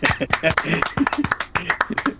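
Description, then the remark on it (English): A brief burst of quick, uneven clapping from a few people, loud and sharp, with voices chattering and cheering over it for about two seconds. “Let's clap really quick, shall we?”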